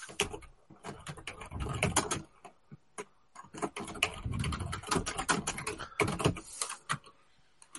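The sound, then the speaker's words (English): Steady, soft typing on a relatively quiet computer keyboard, with rapid clustered keystrokes and brief pauses throughout, no voices. “And with a relatively quiet keyboard, it sounds as if I actually know stuff like that.”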